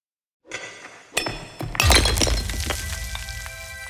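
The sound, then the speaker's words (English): A short produced intro sting for the start of shows in the Pickaxe Network: a shimmering tone swells, then a sharp crack and a loud burst of shattering glass with tinkling shards over ringing, sustained musical tones. No one speaks. “That was the new sting for the start of podcasts that are in our podcast network, what we have just made, called the Pickaxe Network.”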